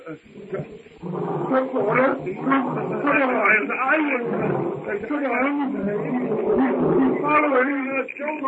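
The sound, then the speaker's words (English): A lion, Numa, roars loudly as it crouches with its belly to the ground before springing on its prey, in a long, rumbling series of deep, throaty bellows and growls that rise and fall almost without pause for about eight seconds. “Numa's roar carries to Tarzan as he sits on a low-hanging branch watching the hut.”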